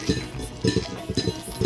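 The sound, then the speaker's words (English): Ice clinks repeatedly against the sides of a cocktail glass holding a single ice cube as the drink is stirred to mix in the sugar, a quick, uneven series of bright tinkling knocks with no talking. “I'm going to try to stir it up to get all the sugar happening.”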